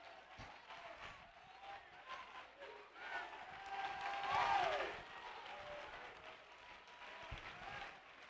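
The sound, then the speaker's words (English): A crowd at Heritage 2006 claps and cheers steadily, with shouts and whoops rising to a louder swell of cheering in the middle before settling back into continued applause. “You're jumping up and down, shouting, screaming, and hollering around here at Heritage 2006.”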